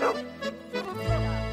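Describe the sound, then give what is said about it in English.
A small Papillon mix dog named Puffin, from Douglas County, Oregon, barks in quick, high-pitched yaps, a few sharp bursts with a short whiny edge, no voices present. “It's fairly clear that one such dog has not received the letter.”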